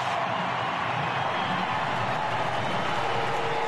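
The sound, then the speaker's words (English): A large baseball stadium crowd, on its feet on fan appreciation night, gives an ovation for Dan Wilson as he takes off his helmet and waves while crossing the first baseline, a steady, dense roar of clapping and voices that holds at the same loud level throughout, with no one speaking over it. “Listen to this ovation for Dan Wilson.”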